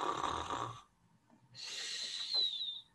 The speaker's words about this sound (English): The pirates creep in and see old Ted snoring gently on a rock for his bed.